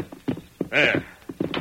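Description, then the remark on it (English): Horses' hooves clip-clop in short uneven beats as Tonto brings the horses, broken midway by a loud, bright horse whinny, then the hoofbeats pick up again. “Come, Tonto, bring the horses.”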